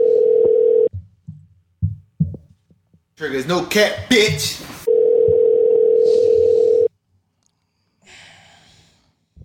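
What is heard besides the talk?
phone call ringing tone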